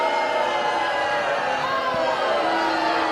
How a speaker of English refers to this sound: Do you hear that? That's the booing of everybody in the world booing you.